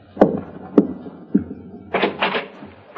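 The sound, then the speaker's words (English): Three evenly spaced knocks on a door, followed by a short rattling clatter as the door is unlatched and pulled open, with no talking. “just answer the door”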